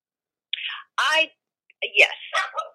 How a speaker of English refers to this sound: I just heard Gracie agree. Gosh, she's so loud, isn't she? I mean, what's up with that? Why do dogs bark all the time?